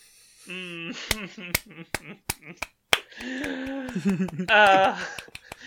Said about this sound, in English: Golf clap. So, brava.